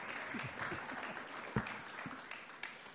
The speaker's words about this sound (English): Absolutely. Give the man a round of applause.